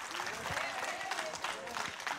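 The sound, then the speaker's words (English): An audience applauds the Lord together while being seated, a dense, steady wash of clapping at moderate volume, with faint voices murmuring underneath. “So as you're seated, would you applaud the Lord one more time?”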